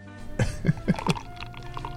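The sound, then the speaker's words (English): Beer pours into a glass, starting with four quick, rhythmic glugs and settling into a steadier, softer stream with a faint ringing tone. No one speaks. “sort of a sound at first, yeah, and then it became more of a pouring sound.”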